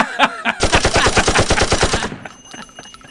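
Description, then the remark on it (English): Rapid automatic gunfire, a tight burst of around fifteen loud, evenly spaced shots lasting about a second and a half, preceded by a couple of single cracks and trailing off into echo. “That's more like the gunshot.”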